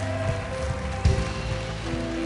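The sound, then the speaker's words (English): An audience in a church sanctuary claps together as a hand clap offering of praise to the Lord, in a dense, steady wash of applause lasting a couple of seconds, with a brief louder burst midway and a sustained musical hum underneath. “Come on, let's just give the Lord a hand clap offering of praise right now.”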